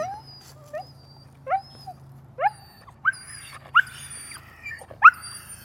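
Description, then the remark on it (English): A dog barks in a run of about nine short, high-pitched, whiny yips, steadily spaced and getting louder toward the end, over a faint low hum, with no talking. “You don't usually bark like that.”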